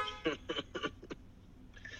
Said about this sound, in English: Yo, who in the fuck is honking?